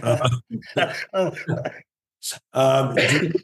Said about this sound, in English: you got the cough too. Everyone is about this. It's just, we're all sick right now.